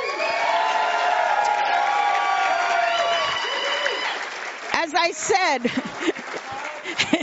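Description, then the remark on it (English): A crowd bursts into loud, sustained applause with cheers and whoops, the clapping dense and steady before thinning out as a few raised voices shout over the fading claps. “Give them a big clap.”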